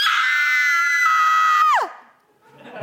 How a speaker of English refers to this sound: he also learned from E.T. how to scream